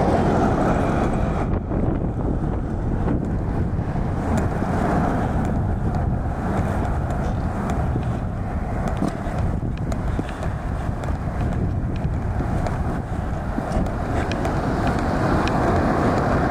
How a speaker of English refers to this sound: Sorry for the wind noise.